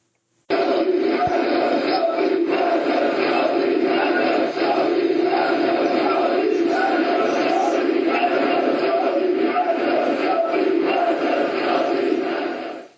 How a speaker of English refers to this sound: It sounds like a crowd chanting something. Yeah, the word is Solidarność, which is the Polish word for solidarity. So this is from the Polish uprising in 1981?